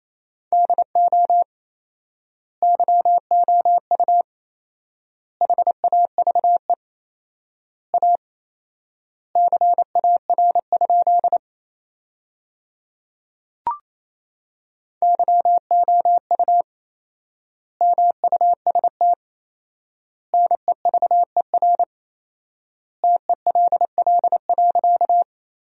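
Morse code at about 28 words per minute, sending sentences made from the 300 most common words with four-times word spacing: a steady mid-pitched tone keyed in rapid dots and dashes, grouped into words with long pauses between them, plus a single soft click partway through.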